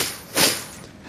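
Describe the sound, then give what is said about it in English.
A single short, breathy sniffle during a sermon being recorded onto CD: an airy hiss of air drawn in through the nose that swells and fades in under half a second, with no talking around it. “I guess I'm going to record all these sniffles as well on this CD.”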